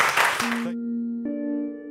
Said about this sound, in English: A round of applause for... Thank you, everybody. Thank you very much.